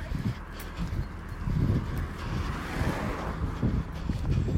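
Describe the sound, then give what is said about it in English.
A large lorry, followed by about six cars, rumbles past on a road, its deep engine drone swelling loudest midway, with gusty wind buffeting throughout and no voices. “So we're just reprising our role of, whoa, this is an enormous lorry. Can you hear that? With about nine cars behind it.”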